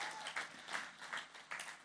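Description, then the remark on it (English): A crowd applauds steadily, a dense wash of many hands clapping together with slight swells in intensity, fairly soft, with no voices standing out. “Hey, can we just give another round of applause for Gabby and Levi?”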